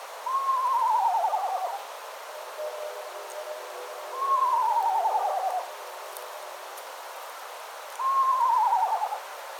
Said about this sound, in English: Now, despite their name, eastern screech owls don't really screech. The eastern screech owl's call is a tremolo with a descending whinny-like quality that sounds a little like a tiny horse.